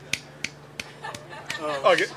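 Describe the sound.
Six or so sharp finger snaps in a steady, fairly quick rhythm, crisp and clear, made by someone snapping at a person walking by, with a voice murmuring underneath during the second half.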